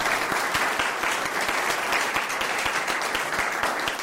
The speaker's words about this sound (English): Would you stand up for a moment so we can just applaud you?